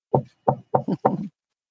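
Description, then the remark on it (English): Solid knocking on a wooden door: two separate raps followed by two quick double-knocks, sounding alone with no talking. “Knock.”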